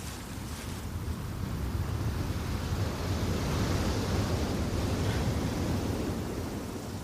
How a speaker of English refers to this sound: Is that what the sea sounds like? Yeah.